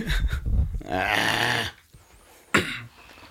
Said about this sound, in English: You got the loogie stuck in the back of your throat.